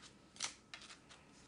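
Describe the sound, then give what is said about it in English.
Soft, papery riffling of a deck of basket-weave-patterned cards being shuffled, a few quick crisp bursts with brief pauses between them, quiet overall and without any voices. “Okay. Now I shuffle.”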